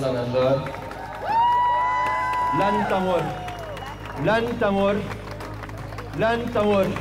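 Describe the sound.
A street protest crowd of Beirut blast survivors and victims' families shouts and chants in loud bursts, raised voices rising and falling over a steady background murmur, with a few pauses between outbursts.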